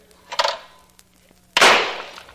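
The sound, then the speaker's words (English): A shotgun loaded with two shells fires twice at two birds, about a second apart. The first blast is sharp, and the second is louder with a longer fading roar. No one speaks. “Well, the rules allow me to load only two shells in this gun of mine.”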